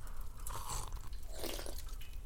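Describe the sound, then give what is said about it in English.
Wet eating noises: soft chewing and crunching mixed with small slurps and drips as someone eats and drinks broth, with no talking. “It really does look delicious. You drink that broth.”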